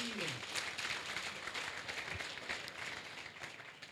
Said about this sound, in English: Let's clap our hands for our pastors.